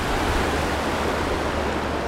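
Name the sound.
flowing creek water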